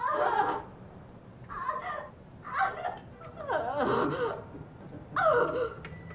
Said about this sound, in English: Or the groans that come from the room next door.